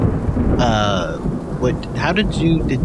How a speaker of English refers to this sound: In that reality, it's sunny and nice out right now. But in our reality, a storm starts right now.